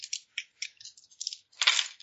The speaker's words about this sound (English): All right, time to roll my physical dice.